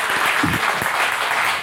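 A crowd claps steadily for a volunteer, a dense wash of hand claps at moderate loudness, with a brief low murmur of voices beneath the applause.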